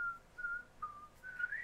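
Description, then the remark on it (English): A person whistles a short run of thin, wavering notes with brief breaks between them, ending on a rising pitch. The whistling is fairly soft, with no talking. “I can't whistle. I can, but I suck.”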